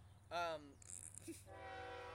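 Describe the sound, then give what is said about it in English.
A passing train sounds its horn in a short blast, followed by a hissing rush and a long, steady horn tone over a low rumble. “Thank you to the train.”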